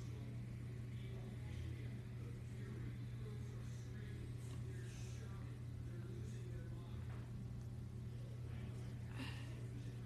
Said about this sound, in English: Man, these cars are loose as we're heading back up on to the back straightaway. And Homestead Miami road course. The regular back straightaway.